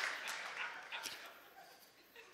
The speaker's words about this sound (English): My first applause here is this.